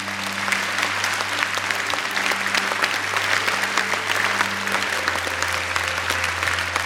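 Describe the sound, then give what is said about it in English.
An audience applauds steadily as people come down to the front, a dense, sustained patter of many hands clapping at an even loudness, with a low hum and faint tones underneath. “If you see someone coming down, I want you to applaud so we know everyone's up the front.”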